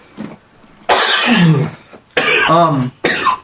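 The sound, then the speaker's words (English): A harsh coughing fit: a faint first cough, then three loud, raspy bursts in quick succession, each strained and throaty, with no speech. “Coughing fit”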